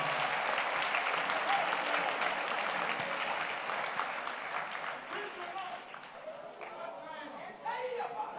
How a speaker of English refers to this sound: Are you clapping hands for the Lord?